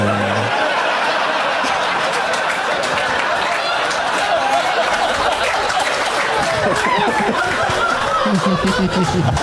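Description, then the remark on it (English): A crowd laughs and chuckles while a steady round of applause runs through the whole stretch, loud and continuous, with dense overlapping claps and no clear speech. “And for some reason, with that round of applause, I'll bow out.”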